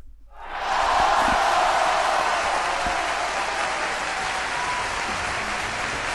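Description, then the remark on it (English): A large crowd bursts into sustained applause, played as a sound effect, a dense wash of clapping that swells within the first second and then holds steady and loud for several seconds without any talking. “Hold on, where's my sound effects?”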